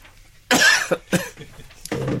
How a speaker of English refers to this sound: You coughed.